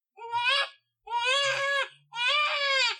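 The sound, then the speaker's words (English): Twin babies squalling in three loud, high-pitched wailing bursts, each lasting well under a second, separated by brief pauses, with a strained, bleating tone and no talking. “Oh dear, that squalling we just heard means I need to go care for the twins,”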